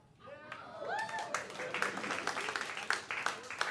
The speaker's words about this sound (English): I see why the applause was tepid.